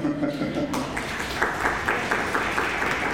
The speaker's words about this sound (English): Oh, thank you. You can clap more.